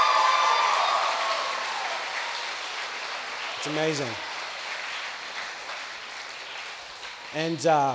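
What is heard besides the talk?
audience applause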